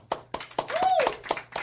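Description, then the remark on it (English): Applause in a steady rhythmic beat, about seven sharp claps spaced evenly, with a brief sliding vocal whoop rising and falling in the middle. “I'm not here for your applause.”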